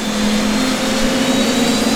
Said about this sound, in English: And it's clear where these planes get their name. The spooling engines sound like an unholy mutant hornet's nest. Feral. Unstoppable.